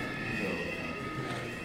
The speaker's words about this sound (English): That's such a great French sound effect for sound. No, no, for sound people, it's like, oh yeah, it's the French siren with the Doppler.